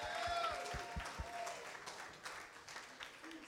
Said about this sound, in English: Welcome to Washington Hall once again. Give yourselves a round of applause for being such a positive force tonight.